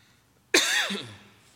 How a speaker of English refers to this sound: Hold on, I gotta fix this and cough.